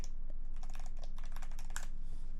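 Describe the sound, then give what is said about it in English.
Rapid clicking of computer keys being typed in a quick, uneven burst, fairly quiet over a low steady hum, with no voices. “I'm getting really good at typing this in.”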